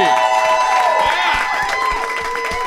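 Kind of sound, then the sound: crowd, audience applause and cheering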